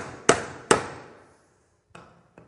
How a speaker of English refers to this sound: But this week, I remember hammering a nail. And it was simple. I got a hammer, and I just started hammering this nail.